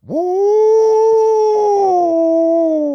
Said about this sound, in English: So we sit down there, and we were using vocals. Didn't even have the – it was just coyote vocals.